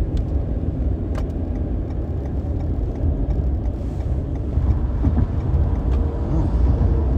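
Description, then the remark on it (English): Heavy road traffic rumbles steadily at night, a deep low engine drone from semi-trucks passing by, swelling slightly toward the end with no one speaking. “Ooh, semi-trucks be out tonight.”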